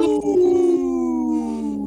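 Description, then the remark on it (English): People let out a loud, sustained wolf-like howl together, a steady cry that holds for about two seconds and slowly sinks in pitch, with no talking. “Howling for Wolves, protecting wolves for future generations. Howl!”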